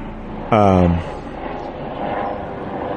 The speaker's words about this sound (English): Oh, sorry, plane.